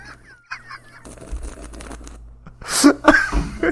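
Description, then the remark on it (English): Someone sips beer: a few faint squeaky sounds, then a stretch of soft wet slurping, ending in two loud, sharp bursts like gulps with a throaty, voiced edge. “That's me sipping mine instead of joining.”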